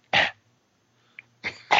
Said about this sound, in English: I mean, I got to cough real quick. Hold on.